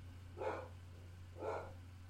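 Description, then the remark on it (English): A dog barks twice, about a second apart, at the mail carrier, the barks somewhat muffled over a steady low electrical hum, with no one talking. “Oh, for the love of God, what is he barking at? Hold on, guys. It's very hard for me to talk when he's barking.”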